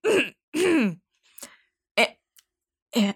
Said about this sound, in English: … coughed loudly.